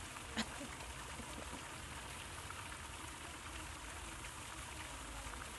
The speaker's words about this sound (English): I hope you can hear the sound of trickling water into the pristine pools. I know I can. It's deafening.